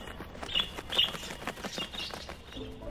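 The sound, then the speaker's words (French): Sparrows chirp in quick, scattered bursts, high and thin, with soft rustling and faint background noise in between; no one speaks. “Parfois je suis le premier rang lorsque les moineaux se posent sur moi.”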